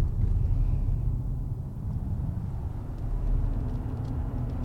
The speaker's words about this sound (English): Well, if it has, it's not really detectable, but then whether it should be detectable at these speeds, at sort of sub 30 miles an hour, it probably isn't. Well, once we clear the 30, we'll see if an engine kicks in.